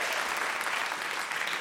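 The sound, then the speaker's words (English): A steady wash of audience applause for guest Emma Kennedy's Celebrity MasterChef win, many hands clapping together at a fairly even loudness throughout, dense and continuous with no single claps standing out and no talking. “Round of applause.”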